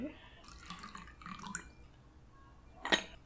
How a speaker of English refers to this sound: should we just check on this tea? Oh, yes, please. I want to see if it's looking... So let me pour you some.